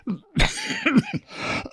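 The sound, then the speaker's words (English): A few harsh coughs come in quick succession, with short raspy vocal sounds between the bursts and a longer rough cough trailing at the end. “That's enough to make you cough.”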